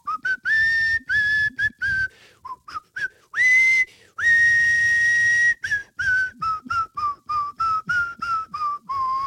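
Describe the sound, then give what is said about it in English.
A man whistles a movie theme tune, with clear pitched notes rising and falling in a steady phrase, some held long and others short and bouncy, with no talking. “I like to whistle, and I was whistling this tune, and you might know it if you take a guess.”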